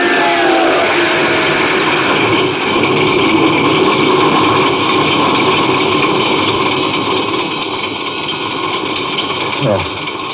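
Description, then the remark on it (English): A car engine, its starter having worked at last, runs loudly and steadily, a dense mechanical rumble throughout, with a quick rising rev near the very end as the car backs up. “The starter worked at last. I managed to back up.”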